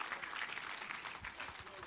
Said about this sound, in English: So celebrate again with applause and be seated.